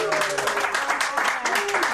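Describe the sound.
A crowd applauds loudly and steadily, a dense crackle of many hands clapping, with voices cheering and whooping over it the whole time, as the host and guests show up at a live show.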